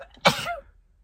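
A single sharp sneeze bursts out, loud and breathy, then quickly fades into near silence with no talking around it.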